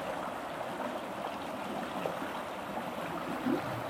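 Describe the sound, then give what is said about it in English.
Steady rushing and burbling of a river flowing over rocks, a continuous wash of water with faint gurgles, no voices. “The music of the river.”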